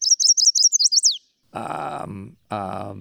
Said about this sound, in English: Chestnut-sided warbler. Correct.